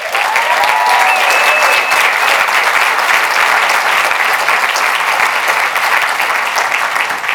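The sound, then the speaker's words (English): Sustained applause from a large audience at a Vayner event, clapping for the Vayner Experience team. The dense, steady clapping holds an even loudness for several seconds, with a few faint whistles early on and no talking over it. “I'd love for you to clap it up for them.”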